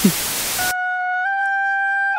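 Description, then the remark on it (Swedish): After a brief burst of hiss, a simple homemade bagpipe sounds a steady, reedy drone of two sustained tones, fairly loud, with no one talking. “Det där är en enkel säckpipa.”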